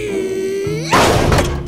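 A long, strained wooden creak rises in pitch, then a door bursts open with a sudden loud crash, followed by a noisy clatter of splintering and rattling.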